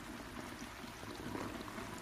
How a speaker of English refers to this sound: Turn on the water.